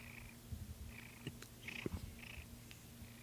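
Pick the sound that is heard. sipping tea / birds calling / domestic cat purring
domestic cat purring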